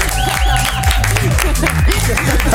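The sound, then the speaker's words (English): An audience welcoming a show guest applauds loudly and steadily, a dense wash of clapping with voices cheering and whooping over it throughout. “I just wanted to give you a proper round of applause.”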